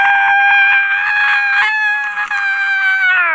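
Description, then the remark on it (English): Voices imitate a cow's moo as if riding a roller coaster: one long, loud, high-pitched wail, held steady for about three seconds like a scream before dipping in pitch at the end. “So today, let's moo like we're on a roller coaster. 3, 2, 1, and moo!”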